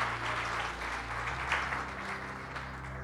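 A large crowd claps steadily and warmly for the full few seconds, a dense wash of applause filling a big room, with soft sustained low instrumental notes humming underneath.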